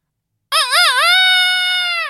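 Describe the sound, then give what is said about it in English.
A person loudly imitates a rooster's crow, one long call that starts with a wavering, warbling rise and then holds a steady, strained note before cutting off. “I can give you a good rooster.”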